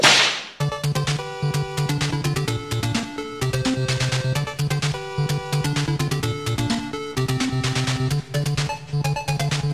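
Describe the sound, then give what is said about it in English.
A single sharp whip crack snaps loudly at the very start, then bright, driving electronic music with a steady bass rhythm plays on for the rest, with no voices. “You stop smacking that wick my way.”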